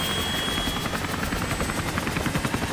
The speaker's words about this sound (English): The commander gives orders to execute an extraordinary rescue mission. Two helicopters carrying 51 Marines take off from the USS Kearsarge.